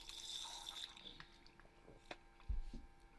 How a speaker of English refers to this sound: Pardon me, I'm having some water.